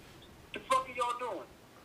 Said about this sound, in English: Hold on 1 second, guys. We got a phone call.